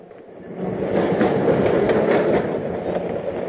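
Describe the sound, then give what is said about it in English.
A subway train rumbles steadily along the rails, a dense roar with faint rhythmic clacks of wheels passing over track joints, swelling slightly and staying loud throughout, no voices. “They had dinner and danced a lot, then took the subway home.”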